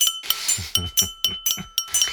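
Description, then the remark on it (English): A small metal screwdriver is bashed on a desk about eight times to imitate holiday bells, in a fairly steady rhythm, each hit a bright, ringing clink with a lingering metallic tone, like little bells. “But so I've got a mini metal screwdriver and I'm just going to bash it on my desk and that'll be holiday bells for everyone.”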